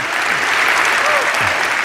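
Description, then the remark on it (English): A crowd claps hands together in a dense, steady wash of applause, loud and sustained throughout with no pauses, individual claps blurring into continuous noise. “Clap your hands, all you nations.”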